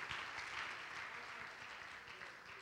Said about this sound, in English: Oh, somebody clap your hands if you're thankful that God knows everything, everything, everything, everything.